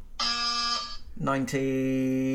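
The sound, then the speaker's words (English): Two loud electronic quiz buzzers sound close together: a steady, bright tone for about half a second, then after a brief gap a second buzz that wavers before holding steady. “So there is now a bonus question up for grabs. Use your buzzers.”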